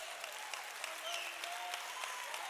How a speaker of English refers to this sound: Let's pause and give God the best praise you've got. Come on. Oh, come on. Somebody clap your way through the pain. Come on.